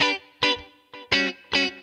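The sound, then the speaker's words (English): A clean electric guitar with its humbuckers split into single coils by the pull pot on the tone knob, both pickups on, giving a quacky tone, plays a short phrase of bright, twangy chords, five plucked attacks in an uneven rhythm that each ring and decay. “Little bit of quack.”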